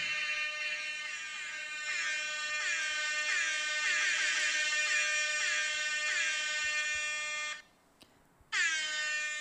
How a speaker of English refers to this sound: Yeah, see, I thought of it when you said that. I was like, I have an air horn.